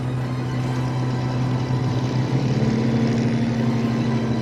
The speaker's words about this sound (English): It's not a boat, it's a hovercraft, eh? It's a hovercraft. Floats on the air instead of the sea.